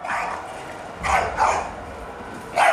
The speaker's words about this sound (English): while you're helping to put out these spot fires and wrangle people, you start hearing a very familiar barking sound.